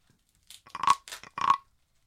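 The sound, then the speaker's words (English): A wooden frog rasp scraped with a stick: a few short, ratcheting croaks in quick bursts, the two strongest sounding buzzy and mid-pitched, with no one talking. “And then when you're done with that, soon, whenever you're done, you put the stick in its mouth. And then it looks like he's chewing the stick.”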